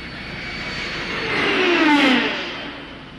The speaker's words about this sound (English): Enemy planes, sir? Impossible. No plane can fly that fast. That looked to me like it was from another planet.